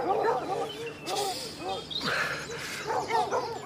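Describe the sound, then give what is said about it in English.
A pack of hunting dogs that have chased their prey into a thicket barks and howls continuously, refusing to follow it into the undergrowth, overlapping yelps and drawn-out bays filling the scene, with a brief sweeping whine cutting through midway. “There they stop, barking and howling, but refusing to follow the prey into the undergrowth.”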